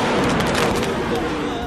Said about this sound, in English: It caught this suicide truck bomb as it careened toward a checkpoint. Before it could be interdicted, it blew up. Later, the Marines acquired this video footage taken by the terrorists showing the same enormous explosion.